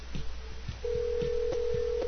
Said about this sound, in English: Phone rings. Hopefully.